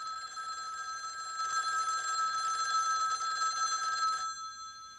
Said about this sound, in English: Or that telephone ringing.